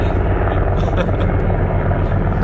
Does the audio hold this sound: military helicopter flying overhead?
yes